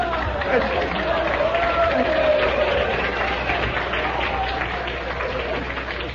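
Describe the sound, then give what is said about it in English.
A live audience applauds and cheers steadily, a dense wash of clapping and mingled voices that stays loud throughout, with a shout or whistle rising briefly above the crowd. “Boy, is this ever an aggressive crowd.”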